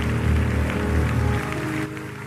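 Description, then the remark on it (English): An audience claps hands together, a dense, steady patter of many hands layered over a low sustained musical drone, easing slightly toward the end. “Come on, clap your hands.”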